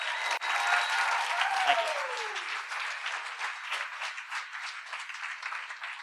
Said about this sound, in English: Big round of applause